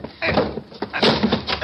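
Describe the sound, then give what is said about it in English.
A locked door being forced open by two men throwing their weight against it: a series of loud, heavy thumps and rattling wooden scrapes in quick succession, ending as the door gives way. “That opened it.”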